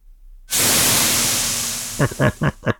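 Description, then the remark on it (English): A steady, hissing bacon sizzle sound effect starts abruptly and crackles loudly throughout, fading slightly, with four short voiced bursts cutting in near the end. “Bacon sizzle for Scorcher.”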